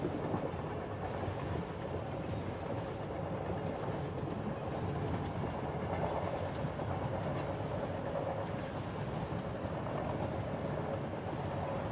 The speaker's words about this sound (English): Imagine behind your closed eyelids that you are sat on a night train to sleep. You are in a carriage that has a large window where you can see the sun setting on a summer's dusk.